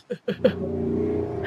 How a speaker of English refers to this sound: Wow. That was a motorbike. Yeah. Sirius just drove by.